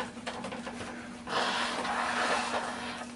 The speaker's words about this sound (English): Oh, dude, it just keeps getting worse. It's like a fucking hemorrhoid. I need to just blow my nose.